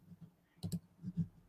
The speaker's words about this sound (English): So I always open on another screen, vertical screen. Lovely. Dashboard. I start typing in dashboard, dash talk, bunks.